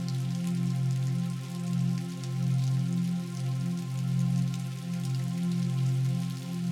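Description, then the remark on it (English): Steady rainfall patters continuously, with a fine crackling hiss of drops over a low sustained droning tone that gently swells and fades. No one speaks. “This is a place where you allow your worries to be carried away by the falling rain.”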